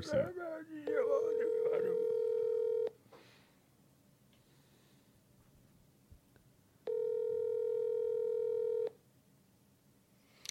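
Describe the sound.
An outgoing Skype call's ringback tone purrs twice, each steady buzzy ring lasting about two seconds with a long silent gap between. Brief voices overlap the start of the first ring.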